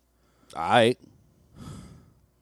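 Heavy breathing right up against a microphone: a loud, voiced sighing breath, then after a short pause a softer, airy exhale. No one speaks.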